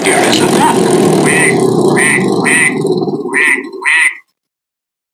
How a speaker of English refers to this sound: That duck. Jesus, I think in like the 2 years or whatever we've been using this, I've never ever heard a duck. I've never heard that duck. It's got a lot to say for itself.